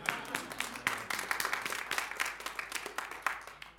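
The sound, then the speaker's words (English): Many hands clapping together during a church sermon, the preacher clapping while holding Bibles, in a dense, steady patter of overlapping claps that carries on evenly for a few seconds at moderate volume, with no voices standing out. “I'm trying to clap with my Bibles in my hand.”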